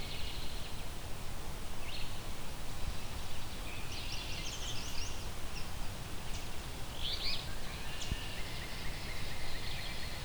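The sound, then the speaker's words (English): An alder flycatcher sings its short, buzzy two-part "free-beer" phrase a few times, fairly faint, over a steady hiss of wind or insects. No one is talking. “Here we go, we got an alder flycatcher. That's that free beer type song.”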